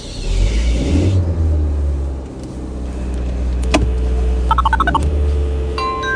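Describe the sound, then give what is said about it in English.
A phone's electronic ringtone trills in short bursts near the end as an incoming call arrives, heard inside a car over the steady low rumble of its engine, with no one speaking. “How do you answer a phone?”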